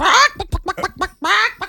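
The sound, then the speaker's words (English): A person imitates a chicken: two drawn-out squawking calls bracket a quick run of short, rhythmic clucks, loud and nasal, with no other talking. “You know, if we're broadcasting to chickens, that was the gospel in chicken.”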